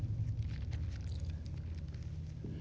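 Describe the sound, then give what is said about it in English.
Soft, scattered rustling of Bible pages being turned by people turning to Hebrews chapter 7 during a sermon, faint papery crinkles over a steady low hum, with no one speaking. “I miss hearing the rustling of the pages.”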